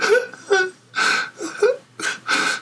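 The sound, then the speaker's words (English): A voice imitates a child crying outside a door, with several short wailing, sobbing bursts in a rhythmic pattern, some breathy and whimpering, moderately loud. “You hear a child crying outside the door.”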